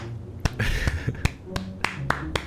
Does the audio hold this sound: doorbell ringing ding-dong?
no